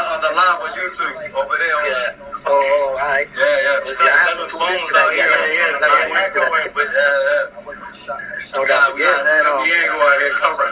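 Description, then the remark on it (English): Continuous voices from a YouTube livestream play back through about seven small phone speakers with a thin, slightly echoing, overlapping quality. The sound is fairly loud and steady, with brief dips between phrases. “Echoing, but the hell is that echo?”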